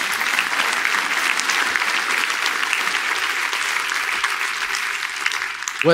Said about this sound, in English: But that's what's important. Yeah, clap that up. Yeah.